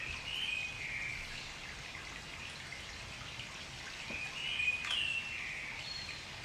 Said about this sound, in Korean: 야 물소리 틀어놔. 물소리 틀어놔라고? 어 뭔지 알지? 응 그러네. 어? 어? 뻐꾸기다 뻐꾸기. 뻐꾸기가 여기 왜 있어? 아니 꾀꼬리다 꾀꼬리.